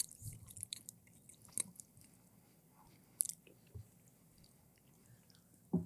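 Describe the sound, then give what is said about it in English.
Someone chews a cookie, with crisp, irregular crunches and soft mouth sounds over several seconds and a sharper bite near the end; no talking. “That cookie is so good.”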